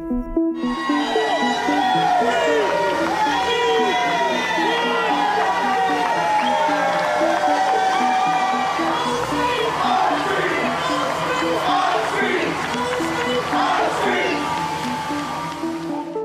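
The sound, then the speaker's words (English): A large crowd in Richmond, Virginia, cheers and shouts together in a loud, continuous roar of overlapping voices as construction workers remove a massive statue of Confederate General Robert E. Lee, holding steady for the whole stretch with rising yells and whoops throughout. “That was the reaction from crowds in Virginia's capital of Richmond on Wednesday, as construction workers removed a massive statue of Confederate General Robert E.”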